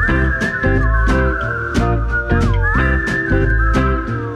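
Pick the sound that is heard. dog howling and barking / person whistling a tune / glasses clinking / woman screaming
person whistling a tune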